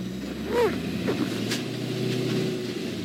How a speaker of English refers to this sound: I mean, this is really wild to be right here, right in San Francisco, driving in the Black Beauty. I can't believe the vibration in this car, man.